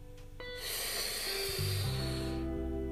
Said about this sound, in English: So first, we're going to start by exhaling, pushing out. And then breathing and inhale.